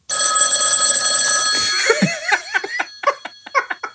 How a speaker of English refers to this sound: Pick it up. Answer it. Oh, baby, just ignore that phone call, baby.